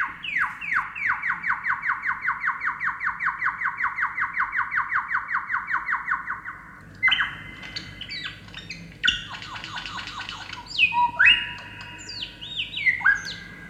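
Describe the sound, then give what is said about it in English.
Birds chirp on a marsh trail with mud flats and puddles at sunrise on an early April morning: a fast, even run of repeated notes for several seconds, then varied whistles, trills and harsher calls from more than one bird, clear with no talking. “Watching birds clears my mind as I revel in their variety, movements and beauty.”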